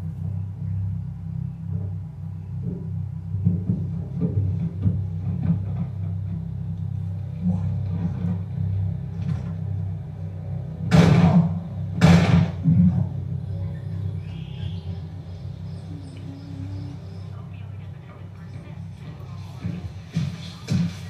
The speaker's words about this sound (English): How are we gonna sleep with that big ass thing stomping around?